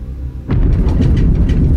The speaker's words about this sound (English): Thunder only happens after lightning. There had been none the entire night.